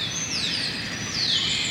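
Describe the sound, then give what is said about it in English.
Birds, including pigeons, sparrows and robins, chirp outdoors at the Lincoln Memorial in Washington, D.C., at 6 a.m., with a couple of thin, descending whistled calls rising clearly above a steady wash of open-air background noise. “Pigeons, you have sparrows, you have a few little robins and whatever floating around.”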